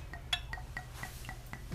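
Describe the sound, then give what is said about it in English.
Blanco tequila being poured into glasses: a quiet run of about seven light, bright glassy clinks at a steady, quick rhythm over a soft, low background hum, with no one talking. “All right, pour these.”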